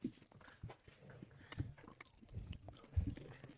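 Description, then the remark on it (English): Chewing of crunchy peanut chocolate candies, with repeated moist crunches and soft mouth noises in an uneven rhythm, a few louder bites standing out, no talking. “You get that salty and sweet, right? The crunch, delicious.”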